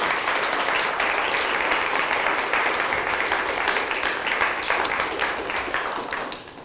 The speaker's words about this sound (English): So big round of applause, please, for Tor.